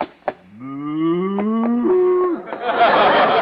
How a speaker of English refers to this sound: Oh, no. Wait a minute, mister. This is a cow. You got good eyes, lady. We'll give you the bucket free. Gosh, a real cow.